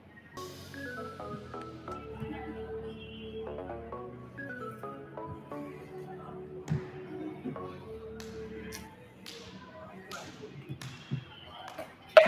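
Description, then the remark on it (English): Several sharp slapping smacks of hands striking together in a slap-hands game, irregular, over a bed of people talking, with a louder crack right at the end. “All right, let's get a little slap hands action going right now on a Friday.”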